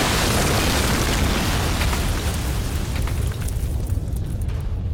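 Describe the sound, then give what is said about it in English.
A massive explosion of 80 pounds of gunpowder with 40 pounds of roofing nails roars at full loudness, destroying a village in a valley: a thick rumbling blast with crackling debris that slowly thins out at the top end over several seconds, with no voices. “The explosion took out the village, cleared the valley of every living thing, and was heard as far away as Halifax.”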